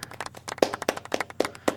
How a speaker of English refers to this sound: So, yeah, let's get a little clap here.